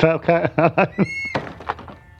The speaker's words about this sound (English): Let's knock on the door. Let's see.